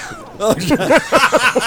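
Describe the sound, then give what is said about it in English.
An angry cat sound effect: a quick run of about six short, rising-and-falling yowls, loud, following one after another with no talking. “It actually says angry cat.”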